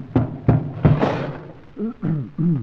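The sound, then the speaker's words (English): A hammer smashes a wooden overmantel that was being blacked out, in three heavy, evenly spaced blows, followed by a brief crunching rattle of breaking wood, then short vocal sounds from people. “Well, now we've smashed the overmantel, where is the window?”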